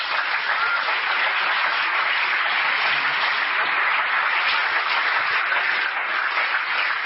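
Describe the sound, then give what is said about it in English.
Sustained audience applause being recorded on tape, a dense, even wash of many hands clapping at steady loudness throughout, with no voices standing out. “I wanted the people back home to hear that clap.”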